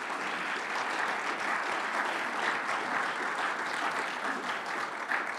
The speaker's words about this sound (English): Is there anybody in the house this morning that would like to testify that you've been in a time when you needed peace and Jesus was that peace? Oh, clap your hands unto the Lord if that's true.